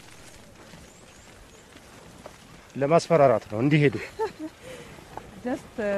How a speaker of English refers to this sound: The whip you hear never actually touches the animals. They're far too valuable for that.